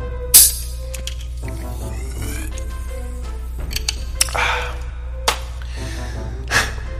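A sharp hissing crack of a drink being opened, followed by clinks and a fizzy pour, with a few more small clicks and bursts of fizz over a low steady hum.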